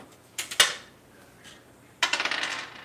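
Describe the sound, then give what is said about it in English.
Dice clatter onto a hard table, a few sharp clicks first, then a quick burst of rattling bounces that settles out. Fairly crisp, with no voices. “Oh my, you need to roll some dice, sir?”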